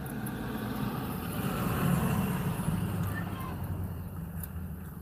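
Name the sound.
bus passing by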